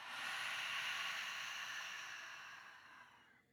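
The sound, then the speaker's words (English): A long, deep exhale through an open mouth after a full held breath during a guided breathing exercise, a soft breathy rush of air that holds steady for a few seconds and then gradually tapers off. No voices. “Open your mouth. Clear it all out.”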